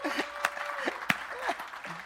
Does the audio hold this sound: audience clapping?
yes